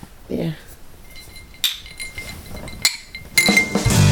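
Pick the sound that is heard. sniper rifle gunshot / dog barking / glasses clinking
glasses clinking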